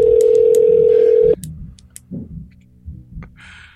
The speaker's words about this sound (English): Calling KJ. It's ringing. You can hear it.